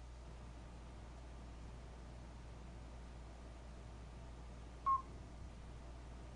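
One short, beep-like whistled tone, a mid-high pitch lasting only a fraction of a second, cuts briefly through a steady background hiss. No one speaks.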